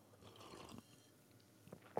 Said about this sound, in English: I think we've achieved a sip of the day right off the rip there. I actually poured it in the cup about 20 minutes ago. Thermal insulation means we're cooking. That's good. Okay. Delicious.